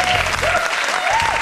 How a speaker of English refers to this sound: Shall I try and reenact it? I know I probably can't, but let's give it a go. Okay, so the audience is cheering.